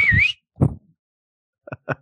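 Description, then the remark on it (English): A short cartoonish whistle slides down and back up in pitch, then a few dull thumps and soft pops follow in a quick, uneven sequence. “Is that when he whistles and this horse falls on him?”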